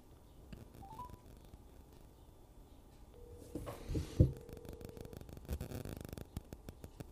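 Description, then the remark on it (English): Brief telephone keypad tones, then a steady ringing tone on the line, with some clicks and handling noise. The sound is fairly quiet, and no one speaks. “Hey, you answered my phone call.”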